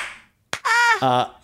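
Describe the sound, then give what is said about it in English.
One sharp, crisp hand clap standing in for a high five, quickly followed by a sustained, pitch-shifting vocal exclamation. “We don't both have to clap to simulate the high.”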